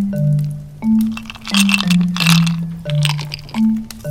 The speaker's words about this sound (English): Oh, hold on here. Just chewing on some ice.